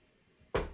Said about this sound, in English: Knocking on wood on that. Definitely got to knock.